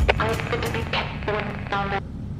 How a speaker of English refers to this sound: I'm getting word that we are experiencing interference with walkies in the farthest reaches of the buildings.